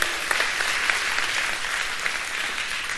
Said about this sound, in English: I want to welcome both of our campuses, LaGrange and Noonan. I'm so glad that you're worshiping with us today. In fact, I want both campuses right now to give each other a huge round of applause, all right?